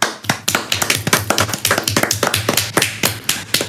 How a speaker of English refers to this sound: I think I just want to give him a little clap. Join me on this, guys. Join me.